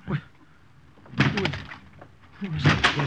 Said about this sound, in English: What right have you coming in like this, breaking down the door?